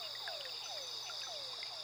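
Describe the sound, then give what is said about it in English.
A quiet nighttime chorus of frogs croaking from rippling waters in repeated, overlapping calls, set against a steady high insect drone, with no voices present. “A chorus of croaks”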